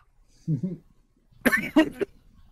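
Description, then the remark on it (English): A brief throaty grunt, then a quick burst of two or three harsh coughs with no talking around them. “Don't mute yourself if you want to hear you cough.”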